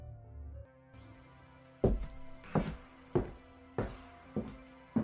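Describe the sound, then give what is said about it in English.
Slow, heavy footsteps thud at a steady, even pace, about six of them, over a low sustained musical drone that starts alone before the steps begin. “Do you hear that? Yeah, I do. What is it? Footsteps?”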